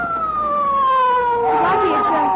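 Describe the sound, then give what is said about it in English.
A police car siren wails loudly and steadily as the car approaches, its sustained tone sliding slowly downward, with a burst of rougher noise joining near the end. Inspector Faraday is in the police car. “It's Faraday in that police car.”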